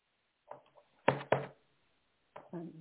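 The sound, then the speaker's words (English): Two quick, papery bursts of a deck of tarot cards being shuffled during a tarot reading, sharp and fairly loud, one right after the other, with faint murmured voice sounds before and after. “One more shuffle.”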